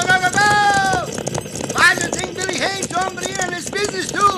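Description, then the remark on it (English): Galloping horses and a thundering cattle stampede in Texas, hooves pounding steadily while men shout and whoop loudly over the rumble as riders try to turn the herd. “Stampede In Texas”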